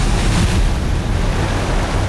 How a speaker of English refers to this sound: It hurtled back toward the water with a massive splash.